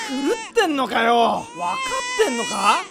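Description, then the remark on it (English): A baby screams and cries in loud, wavering wails with strained, high-pitched rises and falls, broken by short gasping pauses between bursts. “Then how'd you like to put a wet diaper on a screaming baby?”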